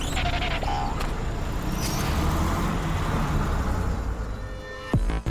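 A bus rumbles through busy street traffic, its heavy engine drone steady throughout, ending with a brief sharp hiss like an air brake.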